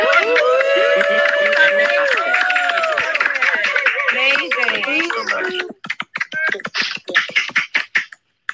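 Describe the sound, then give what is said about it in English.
Several voices overlap in a burst of cheering and chatter, then give way to a few seconds of brisk, irregular hand clapping, loud and sharp, from a small group of speakers on stage who come off mute to applaud a guest for sharing. “I'm going to ask all of the speakers on stage to come off mute and to give you a round of applause and appreciation for your sharing.”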